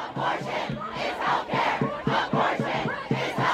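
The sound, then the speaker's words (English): A large protest crowd outside the Supreme Court chants the slogan "My body, my choice" in unison, many voices rising and falling in a steady, repeating rhythm, loud with an outdoor, open-air feel. “As the news spread, a crowd started to form outside the Supreme Court.”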